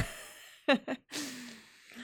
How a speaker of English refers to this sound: just take a breath. Take a deep breath in through the nose. Hold it for 4 seconds.